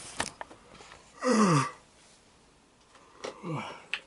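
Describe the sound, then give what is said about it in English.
A person blows their nose in two bursts: a loud, half-second honking blast that slides downward in pitch, then a shorter, softer blow a couple of seconds later, with small rustles and clicks between. “Hold on. I'm blowing my nose.”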